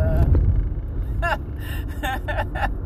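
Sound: car driving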